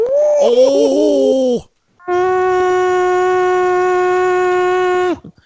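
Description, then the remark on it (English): A voice imitates an owl: first a wavering, warbling call, then after a short pause a long, loud, steady hooting tone held for about three seconds before cutting off. “It's going to blow your mind, this impression. It sounds like an erotic owl.”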